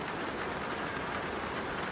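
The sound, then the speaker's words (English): Rain falls steadily on a roof as a dense, even hiss of countless small patters with no breaks or changes in loudness. No voices are heard. “No, it is... the sound of rain on a roof.”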